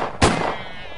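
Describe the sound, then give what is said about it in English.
A single sharp gunshot cracks out loud, then a thin high ringing lingers and slowly fades over the following second with no voices. “I didn't have time to grab for my .45 on the floor as the door to the back bedroom burst open, and a second thug came racing out in response to Trixie's gunshot.”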